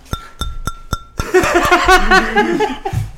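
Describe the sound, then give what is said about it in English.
Four evenly spaced taps on a glass of Lizard Queen, a prickly pear beer from Martin House Brewing Company, each giving a bright, high ringing tone, followed by loud laughter and overlapping voices that drown out the glass. “Quit doing your ASMR. You can listen to the glass.”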